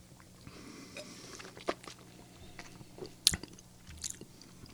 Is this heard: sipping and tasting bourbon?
yes